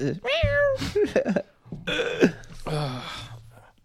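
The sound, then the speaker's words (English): A person imitates a cat, letting out a string of three or four fairly loud meows with rising and falling pitch, some sounding strained and throaty. “And he'd be like... Meow.”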